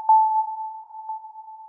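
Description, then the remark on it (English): A steady, mid-high electronic tone hums throughout, marked by two brief, brighter pings about a second apart: sonar pulses sent from a boat going back and forth in front of a glacier, bouncing off the glacier surface to record the distance. No voices. “And so we were going back and forth in front of the glacier, sending these sound pulses out.”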